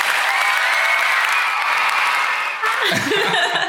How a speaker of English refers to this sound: Ooh, we have 115,000 followers and rising. Insert cheer here.